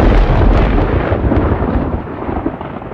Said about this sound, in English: A nanosecond after I wrote it, there was this enormous thunderclap and lightning strike on our building.